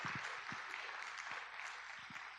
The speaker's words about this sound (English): Come on, if you believe that, give the Lord a good round of applause today.